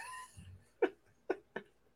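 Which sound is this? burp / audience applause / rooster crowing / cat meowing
cat meowing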